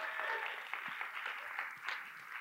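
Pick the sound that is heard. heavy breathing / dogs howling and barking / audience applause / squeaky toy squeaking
audience applause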